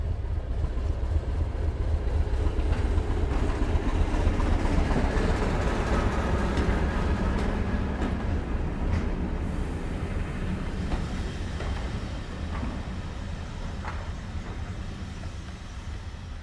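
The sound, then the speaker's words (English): A Hampshire two-car diesel multiple unit train, the first train of the morning towards Alton, rumbles steadily along the rails, a loud continuous low engine drone with rattling and clanking wheel noise throughout, no voices. “The first train of the morning towards Alton is the Hampshire 2-car unit.”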